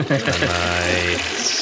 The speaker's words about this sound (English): This one's going to be my first flush of the evening.